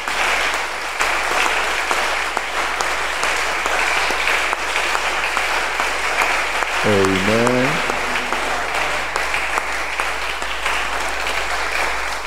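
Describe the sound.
An audience claps for the Lord steadily and loudly throughout, a dense wash of applause from many hands, with a single voice briefly calling out over it partway through.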